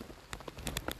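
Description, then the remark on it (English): Rain patters down onto a hard surface, with irregular drops tapping over a steady, quiet wash. No voices are present. “Oh, yeah, that's coming down.”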